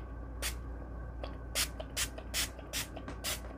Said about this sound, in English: So you should put like something under here so it doesn't go all over the place, because these dyes and sprays can go all over the place. All right, so let's just do a little spraying. Here we go, ready?